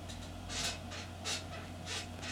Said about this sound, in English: So how about an old chair making controllable creaking sounds. Give us some chair creak. See if you can get some chair creak.